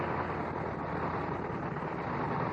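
Vintage World War I fighter planes fly past, their engines making a dense, steady roar that holds at an even loudness throughout, with no voices.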